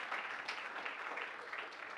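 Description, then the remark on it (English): Steady crowd applause in a church for the speaker's mother as she stands up, a dense wash of many hands clapping at an even, fairly loud level throughout, with no voices standing out. “Okay, round of applause.”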